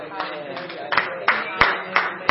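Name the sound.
loud clapping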